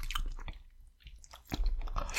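Wet chewing with irregular crunchy bites and squishy mouth sounds, a brief pause in the middle before the chomping resumes louder, no talking.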